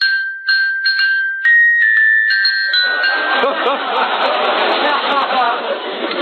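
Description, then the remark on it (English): A small handbell, rung on a street corner for a Yuletide charity collection, rings in quick, bright, high-pitched strokes for about three seconds, then a steady murmur of crowd chatter swells up and fills the rest. “I stand on the corner here and I ring my little bell.”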